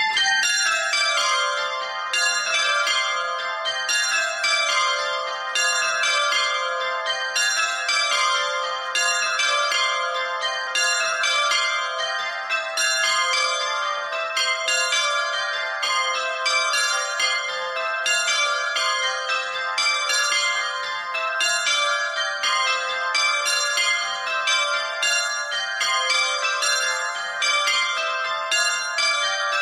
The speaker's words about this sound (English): You might have heard that those were a light set of bells. Yes, they were the lightest ring of church bells there at Warden Hill in Cheltenham. And the tenor is half a hundredweight. They're in the key of C, and there are 6 bells.